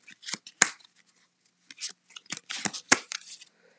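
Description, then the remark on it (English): Crisp card handling, as a cardistry deck is split into packets and cut, with soft sliding rustles and two sharp snapping clicks in two short clusters, with no talking. “That was a packet. I'm going to do a few more packets.”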